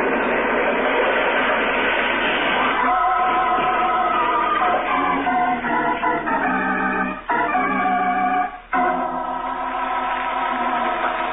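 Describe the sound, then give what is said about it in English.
A train wreck roars on a trestle after a detonator blast: a dense, continuous crash of grinding noise with shrill, screeching metallic tones rising over it, loud throughout and broken by a couple of brief jolts. “driving eastward through the night, far from the scene of the train wreck”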